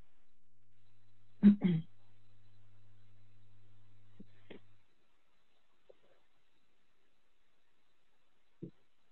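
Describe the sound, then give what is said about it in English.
A person clears their throat, two quick harsh rasps back to back, then a few faint clicks and soft mouth noises spaced out over an otherwise quiet stretch with a low background hum. “I'm sorry, I really have to clear my throat.”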